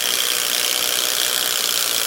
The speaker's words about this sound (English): And then we use a swaging machine, which is a very it's a layered machine which basically shapes the nose of whatever pen or pencil we require.